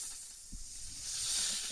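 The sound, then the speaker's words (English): A steady, breathy snake hiss fills the short stretch, swelling slightly louder toward the end, with a faint low thump near the start and no voices. “That's a snake.”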